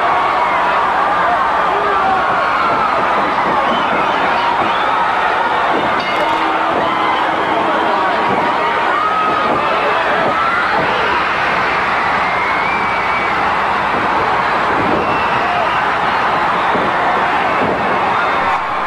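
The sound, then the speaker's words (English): A huge wrestling arena crowd roars and cheers continuously at high volume as Nikita goes after Ole Anderson, a dense wall of shouting voices with no break, swelling slightly in places but staying loud throughout. “But the crowd reaction to all of this is just phenomenal. It's just audio of a crowd, but it gives you goosebumps.”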